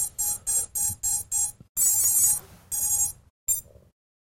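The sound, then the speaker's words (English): Quadcopter ESC beeping during a motor calibration setup sequence: five quick, evenly spaced electronic beeps, then two longer tones and one final short chirp, loud with no talking. “And every time you do this, you're just waiting for the beeping to stop before you hit the next one.”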